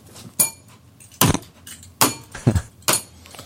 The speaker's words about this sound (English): I'm hitting a bell with a fidget cube. That's a real bell. It's a real bell and a real fidget cube. Listen to that. Oh, listen to that.